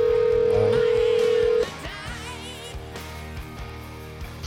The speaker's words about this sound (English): Ooh, there we go. It's ringing. Hope he answers.